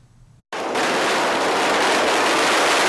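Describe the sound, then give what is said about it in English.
After a brief quiet moment, a loud, dense barrage of firecrackers bursts in, crackling and popping continuously without pause until the end, exploding all around men swaying a deity's sedan chair during the Harbor Cleansing Festival at Yeolyo Fishing Harbor, New Taipei, on Lantern Festival. “They sway the sedan chair and hop back and forth as firecrackers explode all around.”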